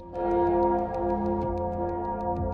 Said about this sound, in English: And as you're having this conversation, you can hear the clanging of some great bell that sounds like it's coming from off in the deep somewhere, just echoing through the house.